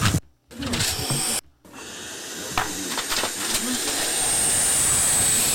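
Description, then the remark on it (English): A harsh, breathy hiss that swells and holds steady for several seconds after two brief gaps, the raspy hiss of owls, fairly loud. “That's, sorry, that was owls.”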